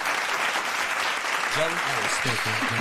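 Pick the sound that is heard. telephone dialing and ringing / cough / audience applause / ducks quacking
audience applause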